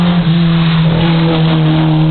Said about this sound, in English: We got a Porsche 944. He's pushing very hard.